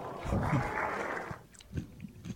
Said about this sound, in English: During an exciting tournament in Marrakesh, the microphone very clearly picked up the sounds of a hungry broadcaster eating live on the air.